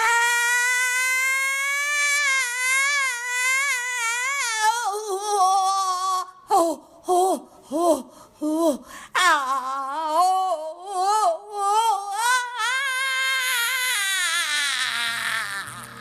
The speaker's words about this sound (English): … posted 19 seconds of screams to her Instagram and Twitter accounts.